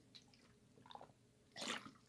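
A few small drips and trickles, then a short, louder burst of splashing water near the end, all close by with no talking.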